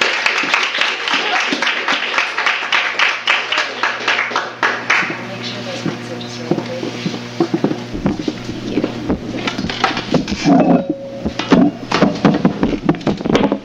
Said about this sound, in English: Let's give them a warm round of applause.